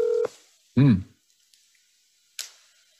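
A telephone call is placed to Julio: a short, steady electronic telephone tone cuts off abruptly, followed by a brief warbling tone burst and, after a pause, a sharp click, with no talking.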